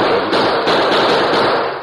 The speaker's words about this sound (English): The Lone Ranger was down to his last few rounds of ammunition when he heard the gunfire suddenly increase.